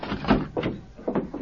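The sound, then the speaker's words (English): A heavy jail door is unlocked with a key and worked open with a few clunky knocks and scrapes, a short burst of metallic rattling and sliding with no one speaking. “There. Door open.”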